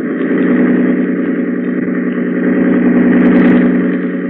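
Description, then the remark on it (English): A motorboat engine roars at full throttle, a loud, steady drone with a thick low hum that swells slightly toward the end. No voices are heard. “Grady, hold tight to the wheel and open the engine up full.”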